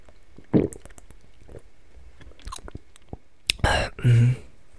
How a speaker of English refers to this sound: I'm gonna eat this real quick, hold up, that's not a video without some ASMR noises, so let me open this water bottle.